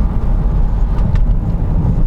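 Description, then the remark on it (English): Steady low rumble of road noise inside a moving hatchback whose battery recharges when braking, with no engine noise: a constant dense hum with no distinct engine note, fairly loud and continuous throughout, with no voices. “I've just got no engine noise. The steering's quite responsive, actually.”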